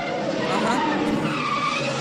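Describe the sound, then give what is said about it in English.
Tires screech and skid loudly in a car chase from a 1968 Hollywood movie, a continuous wavering squeal over roaring engine noise that fills the whole two seconds without a break. “I mean, apparently it's supposed to be the best car chases in Hollywood history in that movie.”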